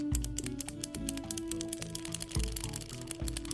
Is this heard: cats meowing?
no